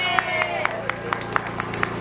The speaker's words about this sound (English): to give a round of applause to those at Richmond Police Department, those at the Sheriff's Department, those at Richmond Fire, the Department of Emergency Communications, and the Richmond Ambulance Authority. Give them a round of applause, everyone.